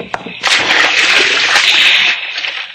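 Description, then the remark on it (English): A heavy coffin holding a body is carried over the side of a ship into the sea, hitting the water with a heavy splash, followed by about two seconds of broad, rushing spray and sloshing before it fades out. “Now, carry it over to the side.”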